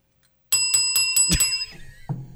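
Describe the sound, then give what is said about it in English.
A bicycle bell rings rapidly, five or six quick bright dings in a row, loud, followed by a short metallic clatter and a fading ring before a low thud at the end. “Did you not hear me ringing the bell?”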